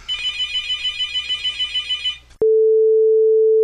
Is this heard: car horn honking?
no